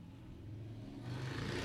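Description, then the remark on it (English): A loud motorcycle engine roars past, its low, steady rumble swelling into a harsher, rising growl toward the end, with no talking over it. “Loudest motorcycle.”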